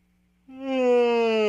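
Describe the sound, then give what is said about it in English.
A single drawn-out yawn begins abruptly after a moment of near silence, a voiced, steady tone with rich harmonics that swells and holds for about a second, fairly loud, with no speech. “Pause for yawn.”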